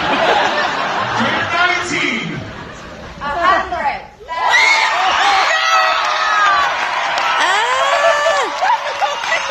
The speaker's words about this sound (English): You hear them yelling, that's Nicole Kidman. That's amazing. So they're just bidding. Well, it went from 19 to 100,000.